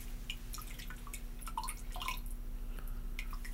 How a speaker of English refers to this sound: So now our sugar cube is broken apart. We've added about an ounce or two of water to our ounce of absinthe. I'm going to add more water than I normally would because I want you to like this.